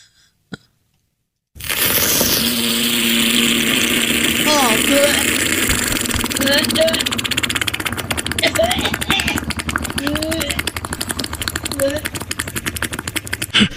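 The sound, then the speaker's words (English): A hot lava cube bubbling in a mayonnaise jar: a dense, sustained sizzle with crackling pops and thick gurgling chirps that rise and fall, starting abruptly after a brief click and continuing steadily throughout. “Listen, this is like a hot piece of lava in a jar of mayo.”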